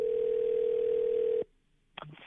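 An outgoing call from the New Country 103.1 radio hosts to a listener's former father-in-law rings through a phone line: one steady, clear electronic tone holds for about a second and a half, cuts off into near silence, then another sound starts.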